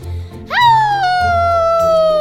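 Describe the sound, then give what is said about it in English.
A single drawn-out howl from a high young voice imitating a werewolf: a quick upward swoop into a loud, steady wail that slowly sags in pitch. The voice is heard alone. “helping me with my werewolf howl.”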